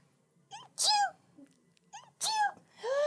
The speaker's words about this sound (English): I have to sneeze.